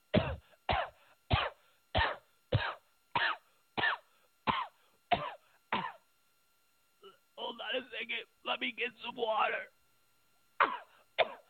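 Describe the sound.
Hillary Clinton has a prolonged fit of harsh, hacking coughs, about ten in quick, steady succession, then a brief stretch of someone talking before two more coughs break out. Fairly loud.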